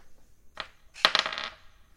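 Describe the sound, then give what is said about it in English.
Dice rolled on a hard surface during a tabletop adventure game: one short clack, then a quick burst of tumbling, rattling clicks that settle within half a second. Fairly crisp, with no voices. “I don't know, maybe we could roll a drug dice and see what we get.”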